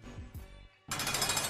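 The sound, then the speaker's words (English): A heavy prison door lock sound effect: low mechanical clunks and grinding, a brief pause, then a loud, harsh metallic slam that rings out broadly. No one speaks over it. “Oh, lock, please, sound effect.”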